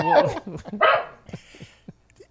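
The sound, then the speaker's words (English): A dog barks twice, two loud harsh bursts about half a second apart, followed by a few faint short yips and clicks as the sound trails off. “He's just a dog.”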